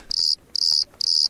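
Crickets chirp in three evenly spaced, high-pitched bursts, each a quick buzzy trill, fairly close and clear with no voices or other sounds.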